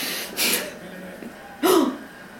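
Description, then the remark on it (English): A sharp, breathy gasp, preceded by a softer quick intake of breath; the second gasp is louder and carries a slight voiced edge. No talking. “Another thing that I saw at work today that I just remember, that's why I gasped, is Eric Hipwood did a, story in Australian Home Beautiful of his home, which was beautiful.”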